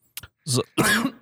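A short fit of harsh, throaty coughing: a quick small hack, then two heavier, raspy coughs in succession, loud and clear with no talking over them.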